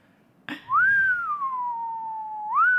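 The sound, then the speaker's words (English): A person imitates a man's appreciative whistle at being shown a car: a single long whistle that rises, then slowly slides down and holds a steady tone before lifting again at the end, clear, following a brief click. “So he kept doing this funny thing where he would just whistle a lot.”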